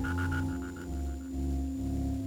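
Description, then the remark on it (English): An animal gives a kiss squeak, two grunts and a lork: a quick run of short, fading mid-pitched pulses and some low, rough grunting sounds, all over a steady background hum. “A kiss squeak is followed by two grunts and then a lork.”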